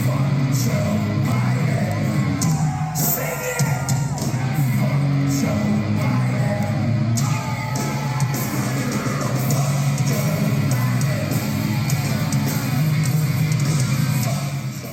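A concert crowd loudly chants 'Fuck Joe Biden' through a huge PA, many voices merging into a loud, dense, steady roar that holds without letup throughout, with occasional sharper shouts and whoops breaking through.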